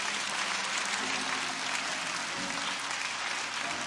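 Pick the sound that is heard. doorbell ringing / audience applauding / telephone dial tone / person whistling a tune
audience applauding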